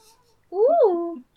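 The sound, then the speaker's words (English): A single drawn-out cat meow, rising then falling in pitch, fairly loud, lasting under a second with quiet around it. “And now a cat interlude.”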